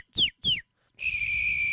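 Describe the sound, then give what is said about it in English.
A professional whistler whistles two quick descending chirps, then holds a long steady high tone, imitating a sound with sharp, clear pitch and no talking. “And how does one become a professional whistler, you might be asking yourselves?”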